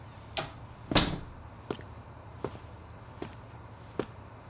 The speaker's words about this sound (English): Close the door.